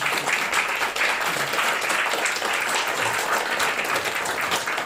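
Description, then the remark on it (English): An audience at Chunky Fest breaks into sustained applause for a production crew member, a dense, steady wash of many hands clapping at an even loudness for several seconds with no voices standing out. “The gentleman at the back there, if you want to just stand up and take a round of applause, please.”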